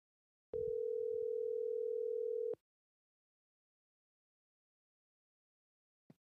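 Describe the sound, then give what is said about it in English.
A steady, loud telephone dial tone hums for about two seconds as a phone call is placed, then cuts off abruptly, leaving silence broken only by a brief faint click near the end. “So let's get him on the phone.”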